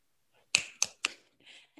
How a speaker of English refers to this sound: I feel like the right thing to do after someone reads is just always to just kind of snap your fingers. I feel like it's the only thing that you can do.